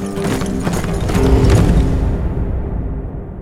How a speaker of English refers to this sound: He swung aboard and galloped through the tunnel to where his own horse was waiting, a faster mount than the one he was riding.